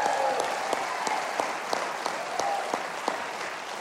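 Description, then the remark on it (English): An audience applauds steadily for a band, a dense wash of many hands clapping at a moderate level, with a few sharper claps standing out at irregular moments throughout. “Hey, how about a hand of applause for …, would you?”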